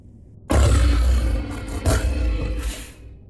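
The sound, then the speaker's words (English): A deep, rumbling growl from Ivan, a beast with 4-inch fangs, bursts in abruptly and rolls on for nearly three seconds, loud and gravelly with a brief surge midway before it cuts off into silence. “He growled and salivated at the thought of tasting the man's flesh.”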